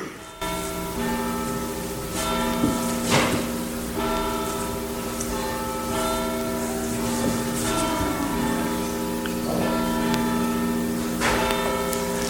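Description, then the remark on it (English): Several church bells ring at 11:15 in overlapping, sustained tones, with sharp strikes recurring irregularly over a steady resonant hum, with no voices. “Now, we have not heard those bells ring like that in the time that I've been with you, and I've been with you 7.5 years.”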